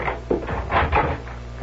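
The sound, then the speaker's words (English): A door is opened and shut as someone comes back in, a brief sequence of wooden creaks and knocks with a soft thud at the end, and no one speaking. “Nobody saw me come in the door.”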